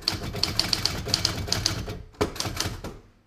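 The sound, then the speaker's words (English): Brisk mechanical keystrokes from a large Olympia SG1 manual typewriter clack in a quick, uneven rhythm, crisp, with a brief pause and a heavier clunk near the end like a carriage or key bar. “But when I took it home and started typing, it was glorious.”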